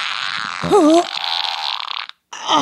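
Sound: imitated fart sound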